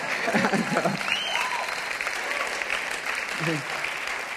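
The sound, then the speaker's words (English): A crowd claps in a steady, dense wash of applause that holds at an even level for several seconds, with a few voices briefly audible underneath. “Man, you guys should have broken out in crazy applause right there.”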